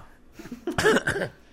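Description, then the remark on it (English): A couple of short, rough coughs burst out in quick succession, fairly loud against a quiet background, with no talking. “I'm trying to cough.”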